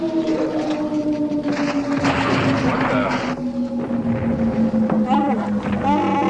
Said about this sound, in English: We come out of hyperspace into a meteor shower. Some kind of asteroid collision. It's not on any of the charts.